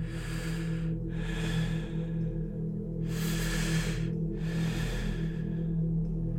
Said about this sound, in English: Sometimes in the day while they were doing their things, and sometimes at night when they were lying on the bed getting ready to sleep. They described the sound resembling someone who was short of breath and gasping for air.